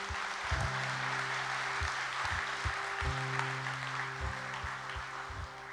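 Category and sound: crowd, audience clapping hands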